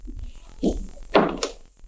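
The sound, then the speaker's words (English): An already unlocked apartment door opens after a key is put in its lock and refuses to turn: a dull clunk of the latch, then a heavier bump and scrape as it swings, all within about two seconds with no voices. “Went on to my apartment when I got there and put my key in the lock. It refused to turn. The door was already unlocked.”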